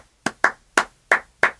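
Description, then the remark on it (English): Six sharp hand claps in an uneven rhythmic pattern, pairs and gaps alternating, each crisp and bright with a quick decay, with no voices present. “But the person beneath them, every time you switch over to the next phrase, you're still clapping that pattern, but it's offset by one beat.”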